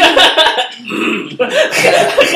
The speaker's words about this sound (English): See how she like politely tried to cough. That's a professional cough right there.